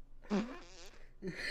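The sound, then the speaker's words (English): A person blows a wet, buzzing raspberry with the mouth, imitating a fart in two loud bursts with a brief pause between them. “His whole face becomes the fart.”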